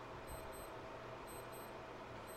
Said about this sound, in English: I don't know what that beeping is. I'm sorry about that, everybody. It might be an alarm on an old watch or something.